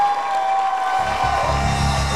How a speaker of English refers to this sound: Can you clap your hands for Jesus? Look at your neighbor. And tell your neighbor that in case you borrow the hands, you want to tell the person that you borrow the hands for, that you want to clap for Jesus. So do it one more time.